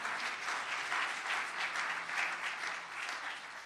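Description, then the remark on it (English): A church audience applauds steadily, many hands clapping together in a dense, continuous patter that holds at an even loudness for the whole stretch without any voices. “Just give God a strong hand clap for that.”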